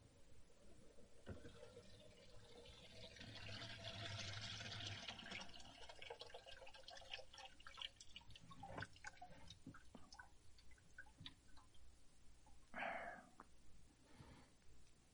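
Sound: water draining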